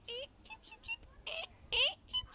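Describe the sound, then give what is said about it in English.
A mother bird calls to her chicks in a quick run of high, bright chirps and tweets, about ten short notes in an irregular rhythm, a couple of them louder and rising. “Sounds like a mummy talking to its babies.”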